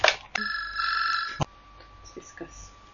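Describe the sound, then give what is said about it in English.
A telephone rings once in a loud, bright electronic trill lasting about a second, then cuts off with a click, leaving quiet room noise and faint murmurs. “And I'd probably answer probably the phone.”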